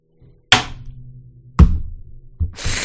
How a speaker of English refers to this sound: The banging of this thing hurt me. I'll need to make myself a gavel for future episodes.